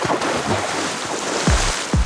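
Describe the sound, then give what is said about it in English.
Steady wash of Arctic sea and wind off Bear Island, then two heavy splashes close together near the end, each a sudden loud, deep burst of water rising above the constant surf. “then was brought back to the reality of the Arctic landscape by the sound of a loud splash.”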